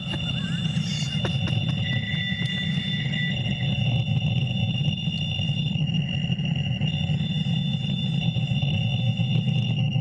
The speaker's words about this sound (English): It's kind of creepy. Sounds like someone's trying to sign online. Back in 1992. Get off the phone, Mom. Get off the phone! Yeah, they just called someone's fax machine on accident.